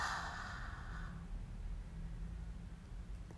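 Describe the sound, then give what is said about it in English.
A single soft, breathy exhale through an open mouth after breathing in through the nose, during a breathing exercise, lasting about a second, quiet, trailing off into a low steady background hum. “Open the mouth and release.”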